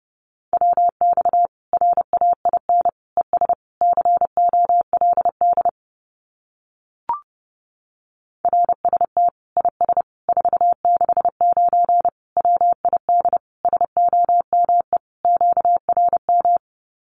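Fast Morse code at about 30 words per minute sending common QSO phrases: a single steady mid-pitched tone keyed in rapid dots and dashes, in two long runs split by a pause with a brief click.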